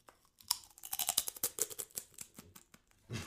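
Loud, crackly crunching of potato chips being chewed: a rapid, irregular burst of sharp, brittle snaps over about three seconds, with no talking.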